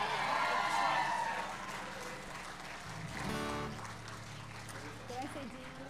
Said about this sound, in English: You're enthusiastic. God loves enthusiasm, you know? In fact, let's just give Jesus a round of applause right now.